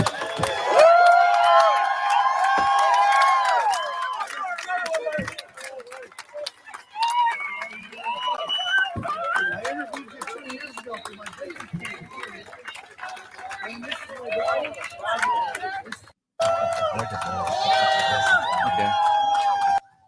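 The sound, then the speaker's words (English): A lively outdoor crowd in Ontario, with a lot of purple among them, fills the scene with overlapping chatter and scattered shouts and whoops, a dense, steady wash of many voices with brief cheering bursts. “I mean, nice crowds, a lot of purple out there.”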